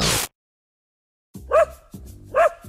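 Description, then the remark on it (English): A dog barks twice, a sharp woof followed by another about a second later, with no voices. A brief burst of noise comes first, then a short silence. “Hear that? Your dog knows spring is coming sooner than you think.”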